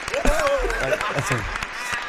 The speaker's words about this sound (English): Round of a fucking applause, G.